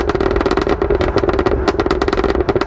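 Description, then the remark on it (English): A rapid, irregular stream of loud crackles and pops from an SUV exhaust as the driver lifts off the throttle, burbling over a steady engine drone for the whole stretch, with no pause and no voices. “It has the longest, loudest, most obnoxious burble tune I have ever encountered on anything.”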